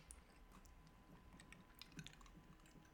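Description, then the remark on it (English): Ice cubes rattle and clink in a glass, a quick irregular run of small clicks and knocks, fairly soft, with no one talking. “Rattling of ice cube listeners.”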